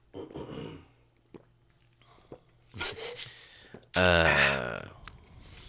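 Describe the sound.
Several gulping swallows with breathy clicks between them, building to a louder, strained throaty gulp with a buzzing voiced tone before trailing off.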